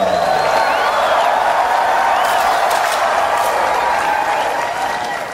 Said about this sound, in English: So of course that's going to get the applause, right? How can anyone be against world peace, right?